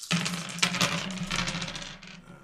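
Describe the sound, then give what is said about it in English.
A handful of dice, rolled to build a dice pool for the tabletop game Fiasco, clatter and tumble across a hard tabletop, a burst of rapid clicking impacts that gradually settles over a couple of seconds. Fairly loud, with no voices. “So let's roll some dice and build our pool and start building relationships.”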